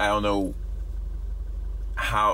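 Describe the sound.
A steady low engine rumble fills the cabin of an idling car, droning evenly throughout, with a person speaking briefly at the start and again near the end.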